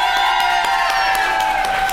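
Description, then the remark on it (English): A crowd claps and cheers loudly to vote for hearing a story about a messy time on a golf course, with dense rapid applause, sustained whoops and shouts layered over it, steady for the whole stretch. “And then everyone who wants to hear story number two about a messy time on a golf course, clap.”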